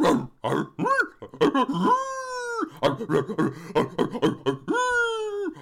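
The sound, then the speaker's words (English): A person tries speaking in dog language, vocally imitating a dog with a string of short grunting yelps and whimpers broken by two long, drawn-out howling moans, all fairly loud with no words. “Well, okay, but let me try it in dog language.”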